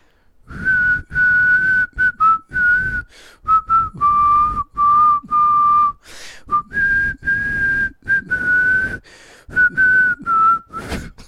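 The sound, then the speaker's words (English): A person whistles a song melody, clear sustained tones shifting pitch in phrases with brief breaths between them, continuing for several seconds without any talking. “I can't whistle when you laugh.”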